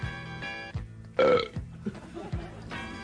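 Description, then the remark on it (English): A loud, drawn-out belch rumbles during a belching contest, surrounded by a few shorter burps in a stuttering series, with no talking. “We have a fabulous belching contest.”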